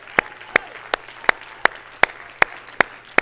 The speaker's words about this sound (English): Everybody clap your hands here this morning.